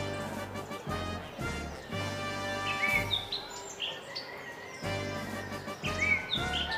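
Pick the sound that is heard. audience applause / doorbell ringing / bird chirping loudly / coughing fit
bird chirping loudly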